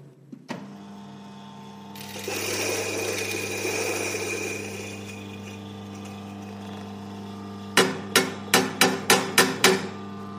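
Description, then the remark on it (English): A motorized coffee grinder whirs steadily for several seconds over a low hum, grinding coffee beans for a paper filter, followed by a quick series of about seven sharp, evenly spaced knocks. No one speaks. “So we're going to grind this coffee up for paper filter.”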